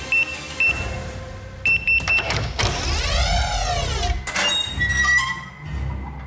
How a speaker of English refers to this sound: I traversed the open floor and headed towards the radar tower's door. I reached it and punched in the code.